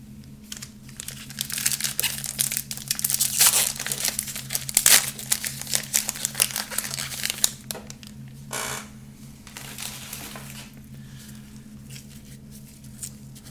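A foil 2023 Donruss UFC trading card pack wrapper crinkles and rips open in dense bursts of crackly rustling, loudest in the first half, then softer fiddling over a steady low hum. No one speaks.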